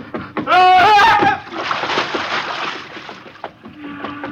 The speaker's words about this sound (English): Oh, madman, to jump in the ocean. I should let you drown.